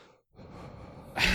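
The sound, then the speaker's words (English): A voice imitates heavy mouth breathing right into the microphone: a short gap, then a long breathy exhale building to a loud, harsh rush of air at the end. “He's a mouth breather for sure.”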